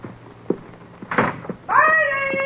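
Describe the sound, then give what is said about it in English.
The door of a den thumps shut, with a few knocks and a sharp latch click as it is locked, then a sustained, wavering high-pitched vocal sound takes over. “You better dump them here in the den and lock the door.”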